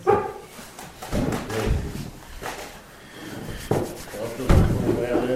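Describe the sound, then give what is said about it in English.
A dog barks once, then a second, quieter bark follows a few seconds later. Both sound muffled against a noisy, echoing background with faint murmuring. “but is this a dog bark, followed by another quieter dog bark a few seconds later?”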